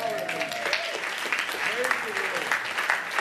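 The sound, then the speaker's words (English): An audience claps steadily, a dense, continuous patter of many hands lasting the whole few seconds, with scattered voices calling out over the applause. “Yes, we can clap to that.”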